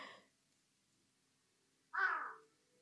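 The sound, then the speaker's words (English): A single harsh, raspy crow caw rings out clearly after a stretch of near silence, following a brief clipped sound at the very start. No one speaks. “Hi, Crow.”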